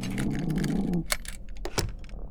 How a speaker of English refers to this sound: Sounds like they're out cold. Go ahead and pick the lock.